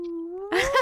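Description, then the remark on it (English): A single voice imitates a whale call: a long, low, sustained moan that slowly rises in pitch, then swells louder and breathier before ending. “He'd be like, that's how whales say it.”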